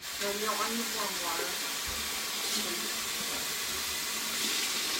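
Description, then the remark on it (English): Cold water runs steadily from a kitchen tap, a continuous hiss filling the whole stretch, with a voice briefly murmuring near the start. “Cold water. Cold water.”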